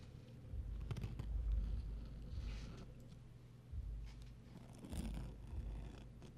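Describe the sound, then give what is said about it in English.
Close, scratchy rustling of a small piece of gum wrapper paper brushed over a microphone for ASMR, with uneven brushing swipes and deep handling rumble over about six seconds, no talking. “I want to try and brush the mic.”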